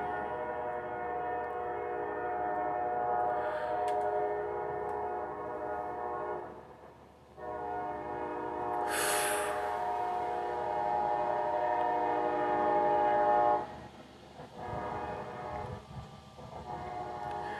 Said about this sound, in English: this train, man, I swear. There goes 2 minutes out of my podcast.